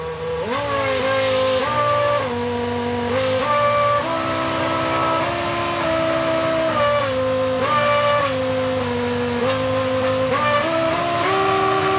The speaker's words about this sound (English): And also kind of a party trick that some of the Formula One teams were doing for a while was programming in songs into the engine. So the engine would change RPM and hold it there just like you would do with a musical note.